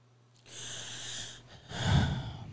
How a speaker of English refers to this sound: Y'all just breathing hard today.